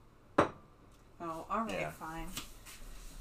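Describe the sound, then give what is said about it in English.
A sharp clink of dishes rings out, then a person talks briefly, with another light clatter near the end. “You should not be doing this right now because you're making noise with the dishes and stuff.”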